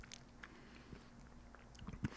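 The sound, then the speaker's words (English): Quiet crunching and chewing of meringue, with a few soft crisp bites scattered across the moment and a slightly louder crunch near the end, heard alone without talking. “I love a little chewy, a little soft, and a little crunch, all in one bite.”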